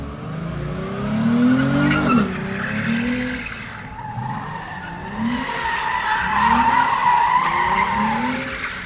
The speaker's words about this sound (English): Just as I arrived, a driver pulled into an open space in the middle of the parking lot, smashed his gas pedal, and attempted to spin a few donuts.